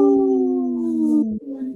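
A wolf gives one long, steady howl that holds its pitch, then slides slightly lower near the end. It sounds fairly loud, with no voices.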